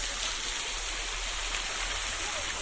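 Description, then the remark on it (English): A waterfall splashes and roars steadily in a cave, a dense, continuous wash of water droplets falling from above that stays loud and even throughout, with no voices. “And then I look up at the bright sunshine and it's just coming through the trees and hitting my face, and then there's light bouncing off the water droplets as they fall from above.”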